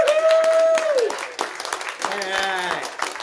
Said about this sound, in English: We want to stand up and get a round of applause. Come on, stand up.